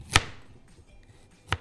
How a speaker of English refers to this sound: Okay, the capsicum is being cut. And then we're onto the wombok over here. Okay, wombok's on the way, capsicum's done, now onto carrots.